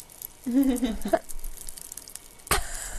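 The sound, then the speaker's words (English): Faint, steady crackling and fizzing of popping candy in a mouth, with scattered tiny pops and one sharper snap near the end; a brief wordless voiced hum rises over it early on. “I've swallowed them and they're still popping.”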